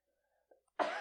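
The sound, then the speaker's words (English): A single loud, harsh cough, caused by drinking spicy pepper vodka, bursts out near the end, preceded by a faint breathy catch; no one speaks. “That was a cough. The pepper really got to me.”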